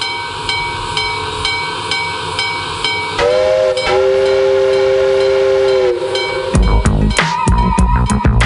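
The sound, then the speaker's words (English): A train rumbles and clatters along with a steady rhythmic clacking, then a loud, sustained whistle blows twice over the rolling noise before heavier banging of the cars takes over. “It's actually the birthday train. Toot toot, beep beep.”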